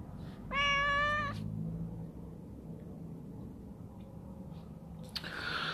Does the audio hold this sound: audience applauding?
no